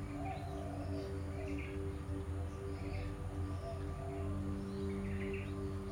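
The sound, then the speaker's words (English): Birds chirp and twitter repeatedly, with short bright calls scattered over a steady low outdoor hum and no voices. “And think how lucky you are to be here practicing yoga, sounds of the birds all around.”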